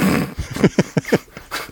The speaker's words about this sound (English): And Fatso's, like, growling at her and aggressively defending his trash can.